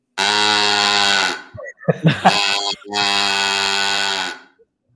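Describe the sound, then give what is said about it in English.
A cow call, an old device for making animal sound effects for movies, also usable as a duck call, played in a barn, gives two long, buzzy, reedy moo-like blasts, each about a second and a half, steady in pitch, with a brief clatter of handling noise between them. “You had to make all the animal sound effects. So this one is a cow ball.”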